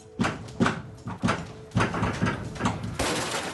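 The front door of a house is kicked in during an ICE raid: about half a dozen heavy, booming thuds land at an uneven pace, loud, with a rattling rumble between blows and no voices.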